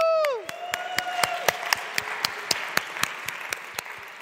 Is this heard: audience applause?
yes